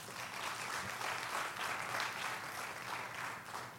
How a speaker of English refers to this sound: Come on, give God a round of applause.